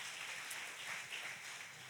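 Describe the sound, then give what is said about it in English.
A large crowd applauds steadily as a round of applause for the Lord, a dense wash of many hands clapping at once that holds an even level throughout without breaking into distinct individual claps. “Come on, give the Lord a great round of applause.”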